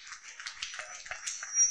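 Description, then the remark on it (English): A group of people clapping together for Jesus, a dense patter of overlapping claps, fairly quiet, with no voices over it. “Clap for Jesus.”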